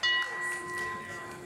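A single metallic gong strike rings out with a sharp onset, then a steady shimmering hum of sustained tones lingers at moderate loudness, with faint background noise underneath.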